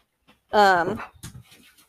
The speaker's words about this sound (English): There's the dog again.